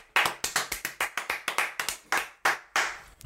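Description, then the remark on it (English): Hands clapping about a dozen times in quick, slightly uneven succession, each clap a sharp, bright smack with no voices over it. “Give a clap to that.”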